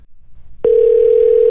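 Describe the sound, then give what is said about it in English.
A steady, single-pitched telephone ringback tone as a man calls his wife starts abruptly partway through and holds loud and unbroken to the end, after a moment of quiet low background rumble. “It's ringing.”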